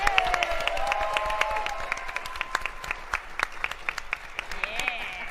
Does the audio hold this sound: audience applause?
yes